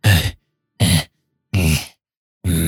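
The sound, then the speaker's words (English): A voice imitates the labored, groaning breaths of an immobilized figure lying on the floor: four heavy, raspy exhalations in a slow, even rhythm, each followed by a brief silence, fairly loud with no other talk. “He's breathing.”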